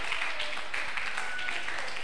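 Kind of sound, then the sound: crowd, audience clapping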